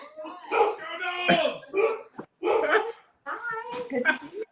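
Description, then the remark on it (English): A dog, set off by hearing other dogs bark, barks repeatedly in loud bursts, with a few short pauses between the volleys. “They got my dog going.”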